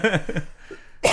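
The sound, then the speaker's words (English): A short voiced, chuckle-like sound is followed by a pause, then a single sharp cough bursts out at the end. “Can you stop coughing for a second?”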